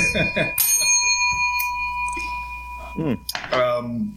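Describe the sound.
A single bright bell strike, rung as a drinking-game cue, rings out loud, its metallic tone sustaining and slowly fading over about three seconds while people talk and exclaim around it.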